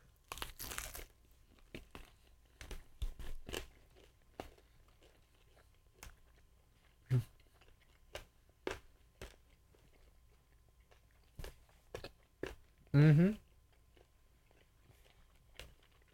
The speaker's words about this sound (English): Okay. These are good. I don't want to want people to hear my chewing.